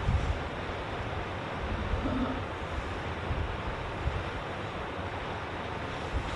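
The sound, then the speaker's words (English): A steady rush of running tap water in a vacation cabin hisses continuously throughout, loud and unbroken, with no voices or other distinct sounds standing out. “You have to turn on the water every time you want to use it”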